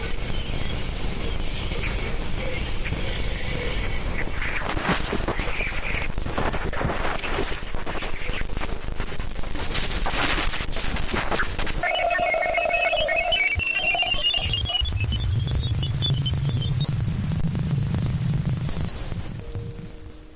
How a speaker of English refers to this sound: They also recorded some radio signals coming off of that motherfucker. Okay, now you might be like, oh, Zindu, radio signals, it's probably just some static. No. Listen to this shit.